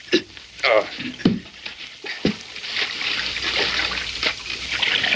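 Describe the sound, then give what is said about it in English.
Creek water trickles and splashes steadily, growing fuller after a few sharp knocks and splashes near the start as men lift something into the creek to wash rock for gold, with brief human vocal sounds mixed in early on. “Help me lift this thing into the creek.”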